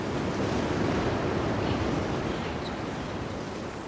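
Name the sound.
ocean waves surging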